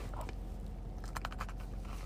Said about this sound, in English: It's also got a really nice crisp to it. Mm-hmm. A nice crunch, but still tender chicken. Yeah. I want to get you guys in on this crunch here, because I think you should enjoy it, too.